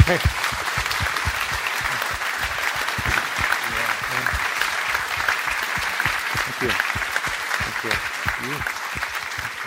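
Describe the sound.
A steady round of applause from a group at Spirit Rock, given for a person being thanked, dense clapping that fills the whole stretch at an even loudness, with a few voices faintly mixed in.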